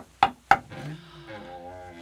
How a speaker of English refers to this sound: Go ahead, knock. Look, we either knock and nobody answers, or...